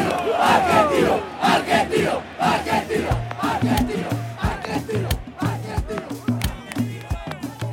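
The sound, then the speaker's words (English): A huge stadium crowd at an Argentino Juniors match roars and cheers wildly as the players pop out of Maradona's chest cavity onto the field, with shouting voices layered into a loud, sustained din and a rhythmic low pulsing chant underneath in the second half. “One by one, the players pop out of his chest cavity onto the field, and now the crowd really goes nuts.”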